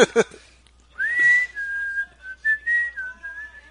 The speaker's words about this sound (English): I shouldn't whistle around dogs.